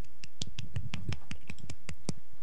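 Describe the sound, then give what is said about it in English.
Scattered applause from what sounds like one or two people, about a dozen sharp claps in a loose, uneven rhythm with no voices over them. “I got an what? Applause.”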